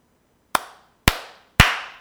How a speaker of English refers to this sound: Okay, so just for my own sanity, when I'm editing this, we're gonna have to sync up audio really quick. So give me 3 claps.